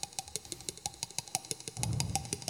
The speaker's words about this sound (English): Despite the sound falling like a wave of rain across the landscape, it felt intensely private, a sound made for each of the thousands of crickets in this paddock. And if I stood still long enough to become invisible to them, the singing became louder